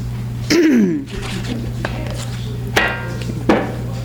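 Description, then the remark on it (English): Someone pauses for a drink of water: a muffled gulp near the start, then two sharp knocks a moment apart as a glass is set down on a hard surface, over a steady low hum. “And I'm going to stop and get a drink of water.”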